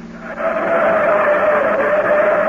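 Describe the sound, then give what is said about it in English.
A new car speeds on a steep grade through sharp turns with a loud, steady engine roar and a sustained high whine that bends slightly in pitch, continuous for the whole stretch, with no voices. “These turns are plenty sharp, Darrell. Slow down, please.”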